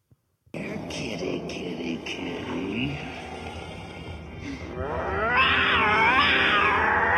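A cat in a video shown on a screen meows loudly in a couple of long, wavering, drawn-out cries near the end, following a stretch of muffled voices and background noise.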